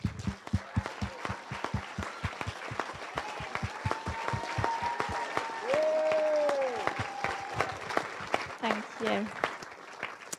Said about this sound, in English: So if you're on the team, I'd like you to just stand up and I'd like to give them a massive round of applause.